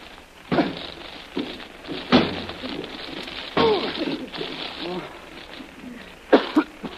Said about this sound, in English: Now stand back. I'm going to try to smash my way through this door.